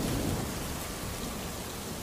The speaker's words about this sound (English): The vast crashing of thunder overhead. The standstill brilliance of sheet lightning. The sudden downpour of a storm urged me out of doors, and I stand in deafening, strobed darkness with the water drilling into my skin.